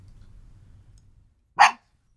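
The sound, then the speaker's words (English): A single sharp, loud bark from a yard dog rings out after a stretch of quiet low background rumble; the dog is barking at a voice heard outside. Nothing else follows it. “Did he just bark at you? No, he heard a voice outside.”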